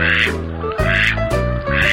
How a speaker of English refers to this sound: Some ducks quack.